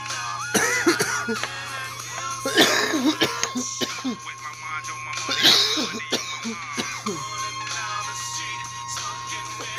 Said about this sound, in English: It's so unprofessional for me to be coughing on podcasts like this, y'all.